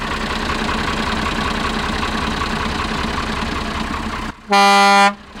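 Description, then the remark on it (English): The Perkins diesel engine of an International truck idles loudly and steadily with a rough, throbbing rumble, then cuts out as a single long, blaring horn blast sounds near the end. “Walk over here to the Perkins diesel-powered international.”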